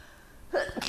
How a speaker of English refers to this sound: Bless you. Bless you.